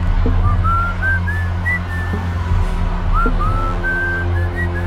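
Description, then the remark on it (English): A man whistles a bright, bouncy, happy tune of short rising and sliding notes, fairly clear over a steady low mechanical hum, with occasional soft knocks and no talking. “As he whistled his happy tune, I spotted several of his regulators pouring out barrel after barrel of a clear liquid.”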